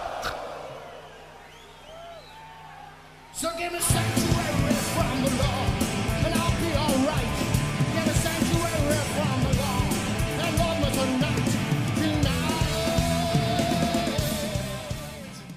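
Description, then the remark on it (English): A few seconds of quieter crowd and stage noise, then a loud live band crashes in at a 1996 concert in Chile, with the singer's strained, shouted vocal yelling at the crowd and pushing hard over dense, distorted instruments. “He's downright yelling at them.”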